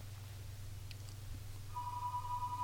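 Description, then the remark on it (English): A landline telephone downstairs starts ringing partway through, a steady electronic tone that sounds faint, over a constant low hum with no one talking. “I didn't unplug my downstairs phone.”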